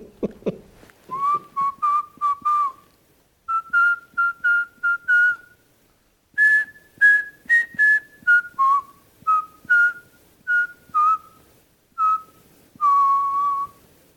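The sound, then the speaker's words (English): Someone whistles the tune "Farmer in the Dell", a bright melody of short, bouncy notes in several phrases separated by brief pauses, ending on a longer held note, with no talking. “I just know that when he get there, he gonna be whistling "Farmer in the Dale."”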